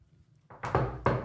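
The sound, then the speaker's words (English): Knuckles rap on wood a few times, three sharp, fairly loud knocks with slightly uneven spacing, and no talking over them. “Knocking on wood for everybody.”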